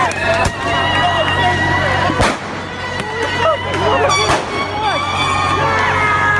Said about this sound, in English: Last night, here's some of the people shooting off fireworks at public buildings last night at Berkeley.